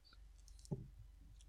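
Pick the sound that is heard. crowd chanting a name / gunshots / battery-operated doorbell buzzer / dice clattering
dice clattering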